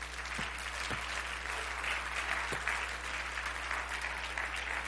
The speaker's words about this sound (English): Now, why don't you just clap real big like you mean it?